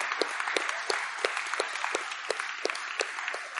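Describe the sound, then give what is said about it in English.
A church audience applauds steadily to honor people standing to their feet, a dense wash of many hands clapping with a few sharper, louder claps standing out at a quick, fairly regular rhythm. No one speaks over it. “Give these guys a bit of a round of applause.”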